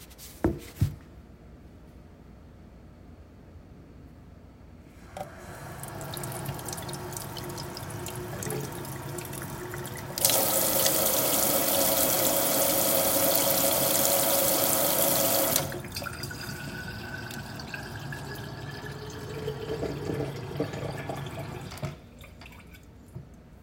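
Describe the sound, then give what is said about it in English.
Water runs from a tap into a container for about twenty seconds, gushing hardest in the middle, then the pitch rises steadily as the vessel fills, before the flow stops. No one speaks. “So we'll do a little mindfulness for the water.”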